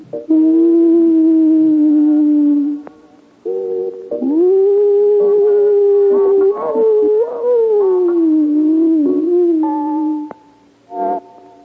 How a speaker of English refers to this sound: And from the far-off hill, on the horizon that stretches all the way to the gray sky, occasionally is heard the keening of a hunting wolf.